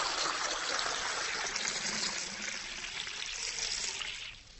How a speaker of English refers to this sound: So I'm going to do it again to have a look at what's happening. So I'll fill up the glass of water.